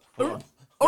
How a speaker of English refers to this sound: I'm gonna pull up the dumbass dog who laughed at you. He laughed at you. Like a dolphin.